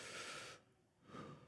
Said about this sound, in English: We have the rhythms of breathing, just for a moment.